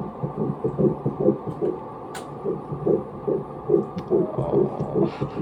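A fast, steady fetal heartbeat heard during an ultrasound on an ultrasound monitor: rapid whooshing pulses, roughly two or three per second, over a constant low muffled hum, fairly loud with no talking.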